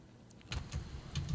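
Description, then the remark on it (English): A few muffled clunks and scraping bumps as a laptop is handled and its cable plugged in so it can play audio, arriving in quick irregular bursts over a quiet background with no talking. “wants to plug his laptop in so he can play some audio.”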